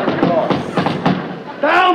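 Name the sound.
knocking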